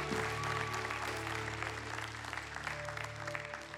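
An audience claps together in a sustained burst of applause, dense and steady for several seconds, with a low background hum underneath.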